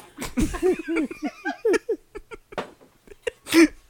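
A strange, drawn-out burp from the throat, breaking into a string of short, wobbly voiced bursts with shifting pitch, followed by a few quick gulping sounds and one louder final croak.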